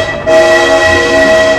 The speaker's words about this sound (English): Whoa, a train pulling into a normally numbered platform. Actually, it's a very unusual number, you see. It's 9 3/4.